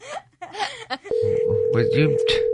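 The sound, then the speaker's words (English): A steady, unbroken telephone line tone cuts in about halfway through and holds to the end, loud, while people keep talking over it. “You don't have to have the ringing at full volume either, Miss Producer.”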